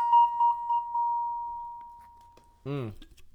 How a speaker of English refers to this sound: Give me that round three bell. Or whatever round it is. I already forgot.